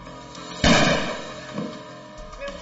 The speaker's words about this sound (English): Gun had gone off accidentally. The intruders worried the sound had alerted neighbors.